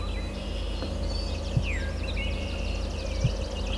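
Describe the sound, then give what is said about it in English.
An alder flycatcher's short, burry song comes through faintly amid other thin bird chirps and trills, over a steady low rumbling hum, with two soft thumps. “There's the alder.”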